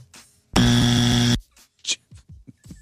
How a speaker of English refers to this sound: I just gave it the buzzer.